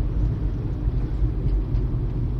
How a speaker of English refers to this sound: It's crazy traffic. 8 o'clock on a Saturday night. Yeah. And there's traffic.